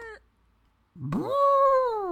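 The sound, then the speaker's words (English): A person imitates an elephant's trumpet: after a short vocal blip and a pause, one loud, nasal wail swoops upward and holds a high, buzzy pitch for about a second. “Yeah, who had the better elephant impression?”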